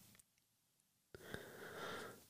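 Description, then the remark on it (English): A single sharp sniff followed by a longer, airy breath drawn in through the nose, loud, with no talking. “Excuse me, I'm the sniff.”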